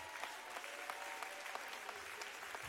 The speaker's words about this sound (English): Why don't we clap our hands in victory?